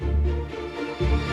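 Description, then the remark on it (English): A brief dramatic music cue sound effect played from a Rodecaster: a loud, bass-heavy sustained chord that drops away for a moment, then strikes again, with no voices over it. “Drama cue.”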